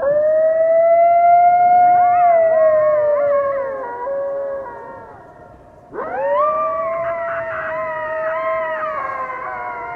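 coyote howling

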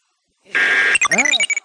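game show buzzer

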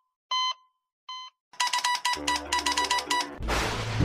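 beep

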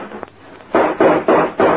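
gunshot

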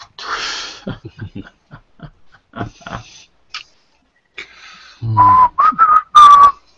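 person whistling a tune

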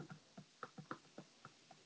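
typing on a keyboard

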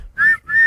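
whistle blowing

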